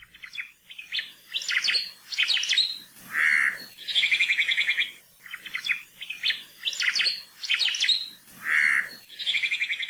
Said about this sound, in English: The Omao, or Hawaiian thrush, is found only in the native rainforests of the Big Island. It's a mostly gray and brown robin-like bird that loves to eat fruit from a variety of native trees and shrubs,